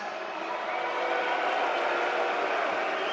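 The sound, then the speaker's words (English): A large crowd at the NHL draft in Montreal boos in a steady, unbroken roar of many voices that holds at a constant loud level for a few seconds, with no single speaker standing out. “Not sure why you're booing that.”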